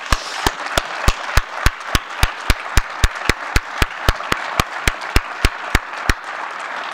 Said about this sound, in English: I want my family to stand up. Let's give my family a round of applause.